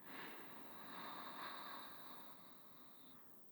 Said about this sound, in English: Make sure that you sit nice and tall, that your spine is nice and long, the crown of the head is pointing up, your chin slightly tucked in, and take a deep breath in through your nose.